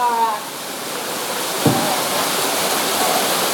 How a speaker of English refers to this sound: You get over there on that slippery rock next to that raging waterfall.